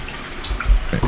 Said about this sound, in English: His old hips hurting. Damn, he's lapping that water hard. He's made him freaking thirsty, didn't it?